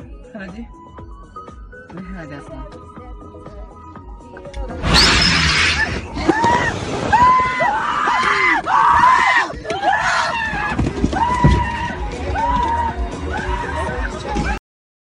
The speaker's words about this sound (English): Oh, the screams.